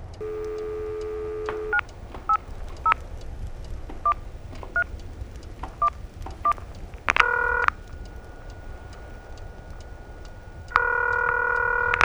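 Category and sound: signal or alarm, telephone touch-tone dialing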